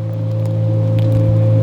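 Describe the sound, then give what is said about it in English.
Drone music: steady, sustained low tones hum without pause at a constant, fairly loud level, with a faint higher tone held above them and a soft hiss drifting through. “Just an interesting piece of kind of drone music that, for whatever reason, has always been in my library.”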